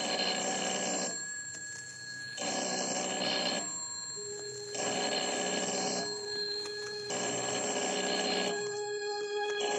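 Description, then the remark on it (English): A telephone bell rings again and again in an empty house, in a steady rhythm, about five bright, jangling rings separated by short pauses. It is fairly loud, with no voices or other sounds. “Ringing in an empty house.”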